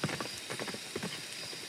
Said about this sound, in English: They hear a galloping not too far away. They keep walking. The galloping continues and then stops.